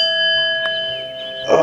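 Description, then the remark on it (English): A struck gong rings during a guided sensory awareness practice, with steady, layered metallic tones that hang in the air, a faint tap partway through, then a fuller strike swells near the end. No one speaks. “Could we get a little gong action?”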